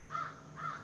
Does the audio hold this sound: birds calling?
yes